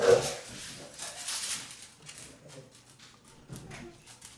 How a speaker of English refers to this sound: For anybody wondering, that's a pit bull. She's going to eat your face. She's right. The sweetest. She's the sweetest dog. But she just does not like other dogs.